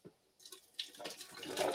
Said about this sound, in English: Okay, we've got our peppers in here. They're still a little steamy, but not as hot as before. Okay, so we are going to carefully just pour these into a blender. Any old blender will do.